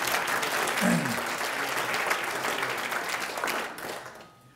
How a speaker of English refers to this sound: And thank you, and round of applause for everyone who's made it possible.